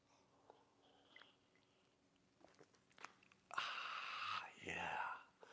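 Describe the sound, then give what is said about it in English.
A fairly loud slurping sip of coffee from a mug, preceded by a few seconds of faint clinks and rustles, with a brief pause midway before a second airy slurp. “join me now for the unparalleled pleasure, the dopamine hit of the day, the thing that makes everything better. It's called the simultaneous sip”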